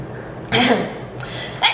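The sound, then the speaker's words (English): A fake sneeze done on command as a party trick: a sharp, breathy burst of noise that trails off, followed by two shorter, sudden huffs within about a second, with no talking. “It would be singing and then like fake sneezing. I can sneeze on command.”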